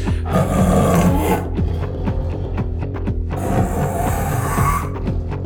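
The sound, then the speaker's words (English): A person imitates a tiger's roar with two long, loud, raspy growling bursts separated by a brief rumbling pause, with no other talking. “We would like for you to be a tiger.”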